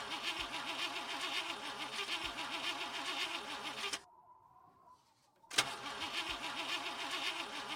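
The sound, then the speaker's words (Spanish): A car engine cranks over and over without catching, a loud, rhythmic starter grind that stops for a brief near-silent pause before the cranking starts again. “Y claro, pues a veces pasaba que la fiesta terminaba antes de empezar.”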